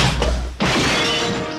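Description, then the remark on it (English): A dull thud, then a loud, sudden crash as a glowing bar table smashes apart when a punched man lands on it, with bright shattering debris ringing and scattering for over a second afterward. No voices. “He punches Shepard 4 feet off the ground and he smashes through one of the glowing bar tables when he lands.”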